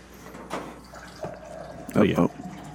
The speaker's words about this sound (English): Oh, hi, honey. Wife's getting some water there. This is exciting. Are you sure you're not just using the restroom? Because that's what it sounds like.